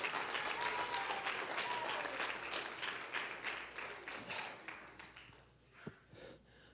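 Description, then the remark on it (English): A church audience claps in praise of the Lord, a dense wash of many hands applauding steadily for several seconds before tapering off, with a few scattered claps and a brief sharp sound near the end. “Can someone give the Lord a hand clap of praise?”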